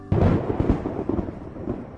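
A loud crack of thunder from a late-afternoon thunderstorm bursts in abruptly, then rolls on as a deep, steady, heavy rumble that fills the rest of the moment without fading.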